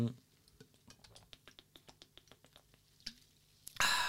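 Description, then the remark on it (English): Sipping lemonade from a glass: a steady run of small, wet swallowing clicks at a quick even pace, ending in a louder breathy burst as the drinking stops. “I'll take a sip of water here. Well, it's not water, it's lemonade.”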